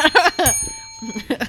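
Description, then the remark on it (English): A single bright bell strike, rung to get the show going, rings out clearly and sustains for most of a second, its tone lingering as voices talk before and after it. “We ring the bell.”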